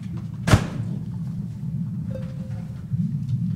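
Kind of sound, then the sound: household object, door closing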